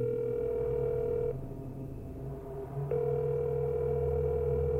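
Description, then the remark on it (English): A mobile phone ringback tone after a number is dialled: a steady electronic buzz sounds for over a second, pauses, then returns, heard clearly and alone through the earpiece with no voices. “As they sit up, they reach into the pocket of the trench coat they wear, pulls out a mobile phone, dials in a number, and holds it up to their feathered ear.”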